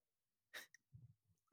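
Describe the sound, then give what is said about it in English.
A guinea pig, picked up and held to a microphone, breathes into it: one sharp, breathy puff and a tiny click, followed by soft, low snuffling rumbles, with no talking. “Can you hear him breathing into the microphone? No? I can hear something. That's him.”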